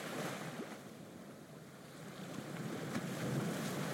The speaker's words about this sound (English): You are riding the ferry from the mainland. It's only about a 25-minute ride.